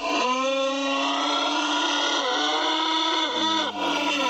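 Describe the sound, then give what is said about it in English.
A rooster crow played backward and slowed to half speed: a loud, sustained, buzzing drone rich in harmonics, holding a steady pitch before shifting lower near the end, almost like a revving engine. “That was a rooster. That is crazy. For comparison, that was the forward. Here's the reverse one more time.”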